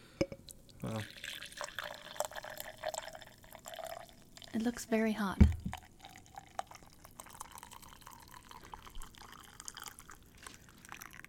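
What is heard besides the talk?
coffee being poured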